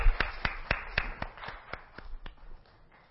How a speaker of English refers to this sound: So let's give God a warm hand clap of praise.